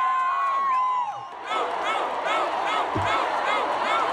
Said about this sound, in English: Everybody in the crowd screaming, blue, blue, blue, blue. Shout out to Blue Ivy.